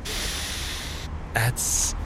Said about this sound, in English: Mr. B invented these. Mr. B's Brassy Beans. You gotta take a sniff of these. All right, I'll smell them.